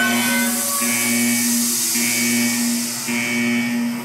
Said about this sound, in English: Steam hissed as the vault door opened up.